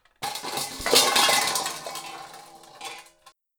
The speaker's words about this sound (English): Sassy Sue Ann Smith, our boarder, woke me up slamming pots and pans in the kitchen.